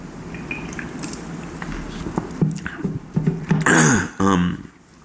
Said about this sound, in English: I'm going to have another little treat, so it's probably going to take me about 10 seconds to chew this. So bear with me.